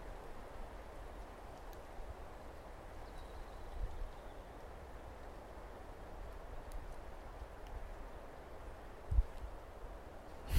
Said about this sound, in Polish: A w międzyczasie zerwał się wiatr. I wrażenie mam takie, jakbym był gdzieś na wydmie nad morzem. Posłuchajcie.